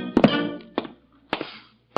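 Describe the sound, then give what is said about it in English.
Footsteps going down the front steps of Gildersleeve's house at night as the great man himself takes his leave: a handful of firm, hollow thuds in an uneven rhythm, each with a short ringing tail, and quiet pauses between them. No one speaks. “And now the great man himself takes his leave and heads down the front steps.”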